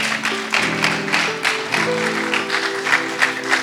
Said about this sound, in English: Yeah, but she is a wonderful. Clap, clap, clap, clap. Let's applaud.